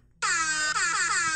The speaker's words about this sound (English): It took me like a minute and a half to pull up my air horn app.